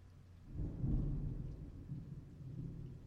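Low, rolling thunder swells in around half a second and rumbles on steadily before easing slightly, with a faint hiss of rain underneath and no voices.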